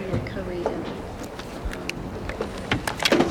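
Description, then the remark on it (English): Chairs creak and squeak in short, scattered bursts as people swing their chairs, mixed with light knocks of wood against wood and clicks, in an otherwise quiet room. “It's funny, it's like squeaky chairs.”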